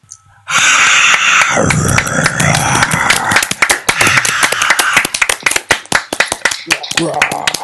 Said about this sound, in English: Please put your hands together, give me a round of applause and a glorious roar of satisfaction